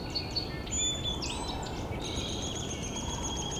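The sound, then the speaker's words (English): A single song sparrow, holding its territory and flying around a tipped-over tree stump, sings a run of bright, varied notes and trills every couple of seconds over a steady low outdoor rumble. “It's looking like this one song sparrow has won this territory.”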